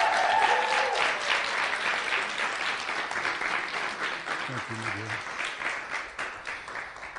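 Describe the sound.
Sustained audience applause, a dense wash of many hands clapping at a steady loudness for the full seven seconds, tapering slightly toward the end with a few faint voices underneath.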